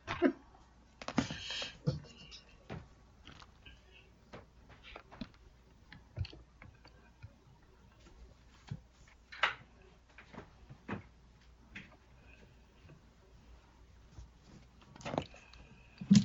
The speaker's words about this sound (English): No, I just left the silence, and they can hear me clicking around on my laptop.